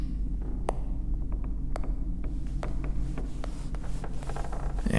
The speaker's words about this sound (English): Actually, hold on a moment. Maybe this will be easier. Let me grab my phone here.